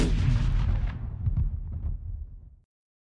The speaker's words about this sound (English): The rocket flies up, barely missing the inn, flies up, shooting right above the hill, and explodes like a big... like a big firework.